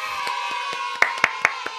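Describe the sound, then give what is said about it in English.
A steady run of sharp hand claps from a soundboard sound effect, about seven in quick even rhythm, growing louder toward the end over a faint constant hum, with no one talking. “That was loud for you? No, the clapping.”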